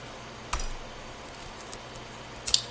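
Tarot cards are gathered up by hand, giving two short papery slaps and faint rustling against a quiet background, with no one speaking.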